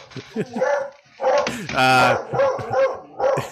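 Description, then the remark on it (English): A dog, Sophie, barks excitedly at someone ringing the doorbell, a rapid string of loud, sharp barks mixed with higher, whiny yips, with barely a pause between them. “I'm going to leave this into the podcast episode for sure, because I want people to know that Sophie is an excellent guard dog.”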